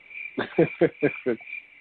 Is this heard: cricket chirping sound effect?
yes